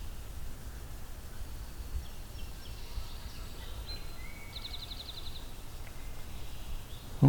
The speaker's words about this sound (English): Pine siskin. That kind of pew pew flying over.